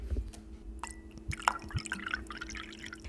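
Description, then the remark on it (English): Ginger beer poured into a glass to top off a vodka cocktail, with a trickling, dripping pour and light fizzy crackle building over a few seconds. No one speaks. “And then we're gonna top that all off with some ginger beer.”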